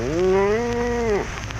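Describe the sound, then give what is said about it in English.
A single long, loud moo from a cow, holding a steady low tone for about a second before cutting off, followed by a soft hiss of background noise. “Come on, cattle, line up.”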